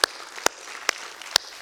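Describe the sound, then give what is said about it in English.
Four sharp, evenly spaced claps ring out about half a second apart over a faint, steady wash of background noise, with no voices heard, clapping to celebrate students reached through a student ministry. “And so we're just so grateful for our student ministries, and that's a good thing to clap for, isn't it?”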